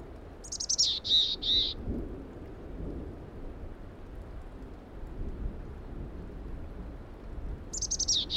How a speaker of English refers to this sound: A mountain chickadee. This is their raspy call, which kind of sounds like they have a sore throat.